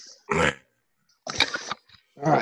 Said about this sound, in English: Oh yeah, there it is. Fucking shit dog.